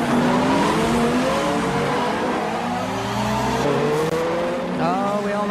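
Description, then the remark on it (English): At a nighttime street takeover in South Los Angeles, with about 150 cars gathered, engines rev hard while tires squeal and skid in long rising and falling wails, loud, with a constant crowd-like din underneath and a burst of shouting near the end. “It was a busy night in L.A. for street takeovers.”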